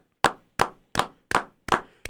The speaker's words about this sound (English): Everybody, let's start a round of applause.